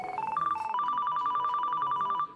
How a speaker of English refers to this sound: Isn't that your phone